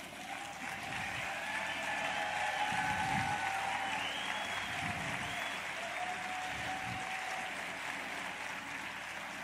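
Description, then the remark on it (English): A crowd applauds steadily for several seconds as a moment of thanks to a team, a dense, even wash of clapping that holds at a constant level without talk over it. “Now, I just want to close with something small, which is a word of thanks and just a moment of applause, really”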